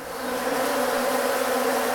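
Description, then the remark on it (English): A steady buzzing of wild bees in the corner of a restaurant hums continuously with a droning tone, swelling slightly at the start and then holding level with no voices present. “And look, wild bees in the corner there.”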